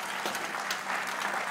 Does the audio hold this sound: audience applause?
yes